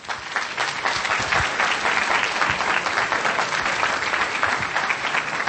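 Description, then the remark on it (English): Steady, dense applause from an audience welcoming a doctor introduced at a medical program, many hands clapping at once in a sustained, even wash of sound with no voices over it. “Please give him a round of applause.”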